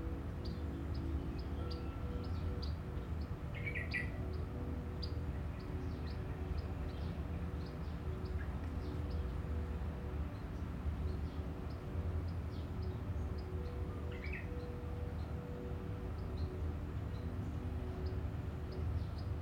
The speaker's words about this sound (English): And begin to move your attention around the sounds, the nature. And so you bring your attention more and more into this present moment. And in this place, you're able to feel the birds, different sounds.